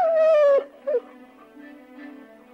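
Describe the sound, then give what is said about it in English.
Someone mimics a dog like Lassie running home and barking: a loud, high, drawn-out whimper, then a short yelping bark, trailing off into softer, lower whining sounds. “But this makes me think of Lassie, when Lassie would run home and bark and her owner would deduce somehow that Timmy was trapped in the well again.”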